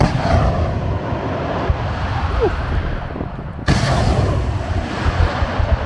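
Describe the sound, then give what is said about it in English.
A rocket artillery salvo fired from a vehicle toward Russian positions several miles away, in a loud, continuous roaring rush with a heavy rumbling low end, briefly surging again partway through; no voices are heard. “We have to get out of here as fast as possible because the Russians might target this position after they got hit by the salvo from our rockets.”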